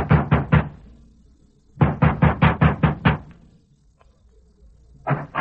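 Loud knocking by Sheriff Ramsey, just dismounted, on the wooden door of Alva Carlson's ranch house in quick bursts: three raps, a pause, then a longer run of about seven, followed by another knock starting at the end.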